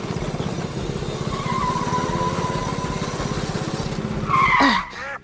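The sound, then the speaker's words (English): A car engine revs steadily during a race with a pulsing low rumble, then tires squeal sharply in a loud, rising skid before the engine noise drops away near the end. “I couldn't hear you over the sound of my engine beating you.”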